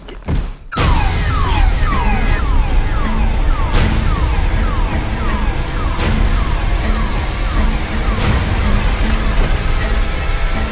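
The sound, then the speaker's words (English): A car alarm, set off when a dog accidentally bumps into the car, blares loudly and continuously, cycling through rapid repeated falling electronic whoops over a dense background of noise, with a few sharp knocks along the way. “And the dog accidentally bumps into the car, apparently hard enough to activate the alarm, but it sort of actually creates this suspenseful scene in there.”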